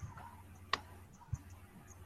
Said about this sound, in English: Finally, some dice rolls.